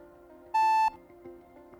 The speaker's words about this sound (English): Don't leave a message, just text. Leave a message after the beep.